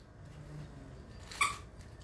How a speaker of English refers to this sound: As my dog steps on a squeaky toy for me to finish this off to give you a little laugh.